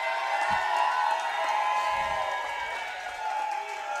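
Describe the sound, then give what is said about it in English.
A large crowd of Chiefs Kingdom fans cheers and applauds loudly for Pro Football Hall of Famer Bobby Bell, a dense, steady roar of clapping and voices that holds for the whole moment without letting up. “Ladies and gentlemen, a big Chiefs Kingdom cheer for Pro Football Hall of Famer Bobby Bell.”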